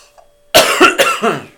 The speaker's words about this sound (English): We need a cough button. That's what we need. That's what the pros have.